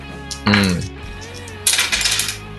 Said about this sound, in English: Oh, yeah, I'm rolling attack dice for some reason. I mean, attack damage. My bad. Ooh, that's 13 plus 6.